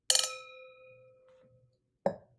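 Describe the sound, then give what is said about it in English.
A bright clink of wine glasses touching in a toast, leaving a clear ringing tone that fades over about a second, followed by a second, shorter knock. No talking. “Oh, should we cheers?”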